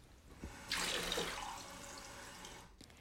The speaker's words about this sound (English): He took something from the shelves and quickly filled a glass of water.